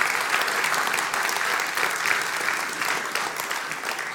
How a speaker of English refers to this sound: And I wonder, could we just give each other a clap and say, well done. Well done for all you're doing. We love it.